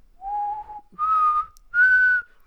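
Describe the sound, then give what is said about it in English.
A person whistles a short three-note call imitating a mockingjay, each sustained tone rising in pitch over the last, with brief pauses between notes and no talking. “You know the mockingjays? That one. Do that again?”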